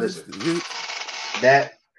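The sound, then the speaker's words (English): A chair creaks loudly, picked up by a microphone, for about a second and a half, a long raspy scraping groan framed by short squeaky, pitched whines at the start and end, then silence. “Man, is that your chair? This right here?”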